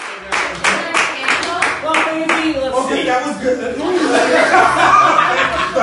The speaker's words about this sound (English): happily clapping and talking a bit in a video clip shared by his friend Richard Martin.